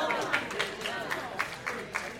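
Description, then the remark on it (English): A church audience clapping, a dense wash of hand claps with steady, evenly spaced peaks, as if many people clap together, amid a murmur of crowd noise. “All the people that are clapping are the people that come on Tuesday and Wednesday, Monday.”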